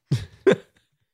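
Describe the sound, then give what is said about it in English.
Two quick, harsh coughs, the second a little sharper than the first, followed by silence. No one speaks. “The last couple of episodes have been punctuated with coughs and haggard voice.”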